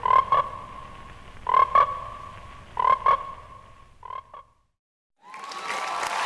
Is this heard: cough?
no